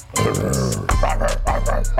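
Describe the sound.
A person on the NBA Today show growls like a wolf, a low, rough, continuous rumble with throaty pulses that swell and break for about two seconds, loud, with no other voices.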